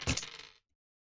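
Dice clatter and tumble across a hard tabletop in one quick, close roll lasting about half a second, then come to rest and leave silence. No one speaks.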